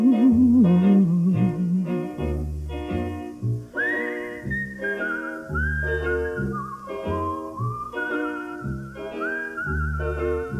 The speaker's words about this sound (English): It's a whistling tune for walking in the night. If you listen, you can hear it in the breeze.